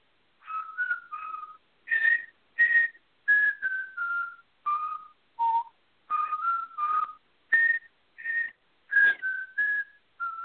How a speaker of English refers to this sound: I don't know what it is, but it's not a song with lyrics. It's just a whistle. And I'm going to try to do this without being too loud, and I might have to just hum it maybe because that might – make more sense, but it goes.